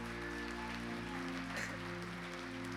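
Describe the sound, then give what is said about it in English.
A church audience claps steadily for a few seconds in praise of Jesus, a dense, even wash of applause, with sustained keyboard chords humming underneath. “Come on, if you believe that all over this house, can we give Jesus a hand clap of praise in this place today?”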